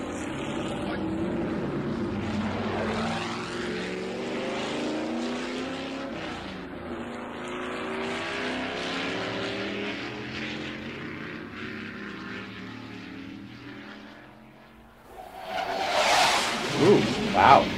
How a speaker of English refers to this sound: Jet.